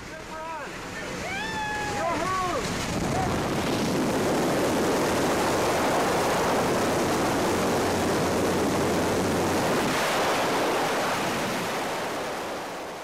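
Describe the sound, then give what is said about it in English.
A loud, steady roar of rushing wind during a tandem skydiving freefall buffets the microphone for nearly the whole stretch, constant rather than gusty. Near the start a voice briefly cries out over it before the roar takes over. “It sounds like a wind tunnel. It's all you're floating through is a column of air. It's enormously loud and windy and constant.”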